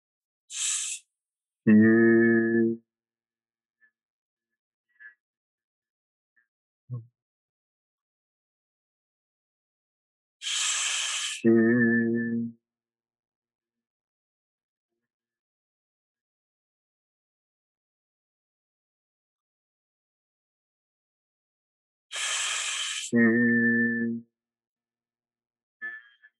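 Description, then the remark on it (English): Three breathy vocal "shoo" healing sounds, made to vibrate the liver, each a sharp hiss sliding into a brief voiced hum, separated by long stretches of silence about ten seconds apart. No one speaks. “So if you want to take your right hand and put it behind your head just to open up that area a little bit extra, we're going to do just three of this shoe sound just to vibrate that organ and get things moving for us.”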